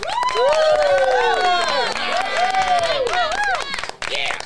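An audience in LA claps loudly and steadily as a musician is brought on one sunny afternoon, people cheering with high, sliding whoops and yells throughout, the clapping continuing under the cheers for the whole few seconds.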